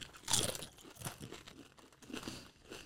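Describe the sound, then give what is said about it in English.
Someone crunches on Flamin' Hot Extra Extra Flamin' Hot Doritos tortilla chips, a series of sharp, crackly bites and chews coming in uneven bursts, the loudest at the start, with no talking. “Flamin' Hot Extra Extra Flamin' Hot Doritos.”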